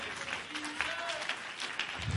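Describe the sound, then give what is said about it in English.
An audience claps their hands to the Lord in dense, sustained applause, with faint voices and murmurs mixed into the steady clatter. “Oh, somebody clap their hands to the Lord right now.”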